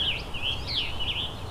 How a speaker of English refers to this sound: There's also quite a few. There's indigo bunting and American goldfinch here as well.